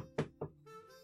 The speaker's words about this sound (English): Cobalt, you hear knocking at your door.